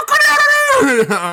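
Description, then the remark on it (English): A person's voice loudly imitates a rooster crowing, one drawn-out strained call that holds high and then drops in pitch, alone. “oh my god, this fucking cockadoodle.”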